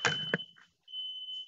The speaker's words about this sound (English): Yeah. Yep. That's at your house. Everything okay? You cool? Fire alarm going off.